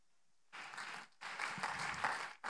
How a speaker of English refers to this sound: We clap our hands because it sounds like chains breaking, and I need some chains broke.